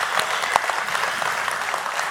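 An audience applauds the students in the room at a weekend service at Copper Hills Church, many hands clapping together in a dense, steady crackle that holds at an even, moderate level throughout, with no voices standing out.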